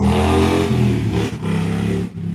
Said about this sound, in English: There goes my friendly neighborhood motorcycle.